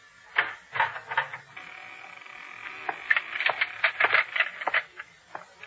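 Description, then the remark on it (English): A door being opened: a cluster of sharp rattling clicks and clunks from the latch and handle, a brief drawn-out creak, then more irregular knocks and thuds. No voices. “Benjamin, open the door, I said.”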